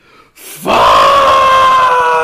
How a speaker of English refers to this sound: I didn't actually yell. That was like one of those fake whisper yells.